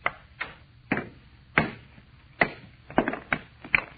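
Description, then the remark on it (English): A hammer strikes a meteor stone of almost solid metal again and again to break it along a fissure, about nine sharp cracking blows at an uneven pace, each one a bright, ringing knock that fades quickly. No one speaks. “All I'm going to do is try and break it along this fissure. You had a hammer and a drill.”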